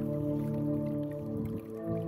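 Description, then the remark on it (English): A hydraulophone, a water-jet underwater pipe organ, plays a sustained, organ-like chord of steady tones, with bubbling, dripping water noise running underneath throughout, moderately loud, with no talking. “Okay, so this is a hydraulophone, underwater pipe organ.”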